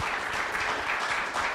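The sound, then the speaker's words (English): A crowd applauds steadily for a woman from the Baltimore grassroots think tank Leaders of a Beautiful Struggle, just awarded a city grant: a dense wash of many hands clapping at an even, sustained loudness with no voices standing out. “Yes, that deserves an applause.”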